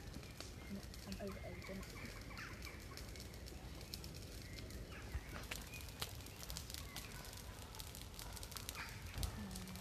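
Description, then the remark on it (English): A big bonfire crackles steadily as more wood is added to it, with dense snaps and pops and occasional sharper cracks as fresh wood catches, over a continuous low roar of flames. “So there's a big bonfire and they're adding more wood to it to make it sort of more like fierce and crackling to get the sound for the recording.”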